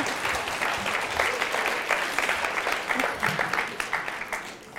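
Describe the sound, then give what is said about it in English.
A crowd applauds the parents in the audience steadily for about five seconds, a dense wash of many hands clapping at an even level that thins slightly toward the end. “Wow, I think your parents deserve an applause right now.”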